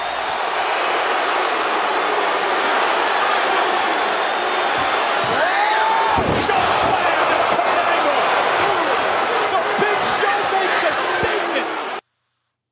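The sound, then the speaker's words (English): A wrestler is chokeslammed hard onto the ring canvas, one loud heavy impact midway through, surrounded by a constant roaring crowd with voices talking underneath. “God, that's his choke slams, man. They're no joke.”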